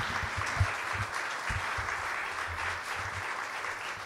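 A crowd applauds steadily for a bride and groom, a dense, even wash of many hands clapping at a constant level, with a few sharper individual claps popping out of the texture.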